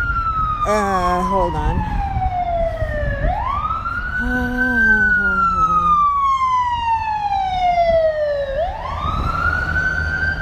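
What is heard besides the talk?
emergency vehicle sirens passing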